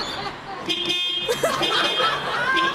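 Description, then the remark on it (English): A retired music teacher plays a car horn as a string of tones, honking Beethoven's Ode to Joy and a bit of Mozart note by note to coax police into returning her car keys, over a busy, noisy background with murmuring voices. “Frustrated and stranded, the retired music teacher tried to coax police into returning them with a car horn symphony.”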